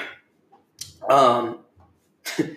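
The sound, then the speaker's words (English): A short run of coughs: a harsh burst, then a longer, throaty hacking cough with a rough voiced tone, followed after a pause by another sharp cough. “part of me is I cough up my lung.”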